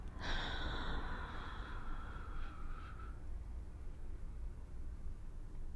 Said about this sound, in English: Some breathing. Breathe in. And out. In.